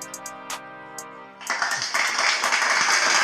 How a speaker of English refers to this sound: Clap it up.